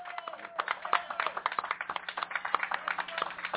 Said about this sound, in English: One more big applause. Woo! Round of applause. Thank you.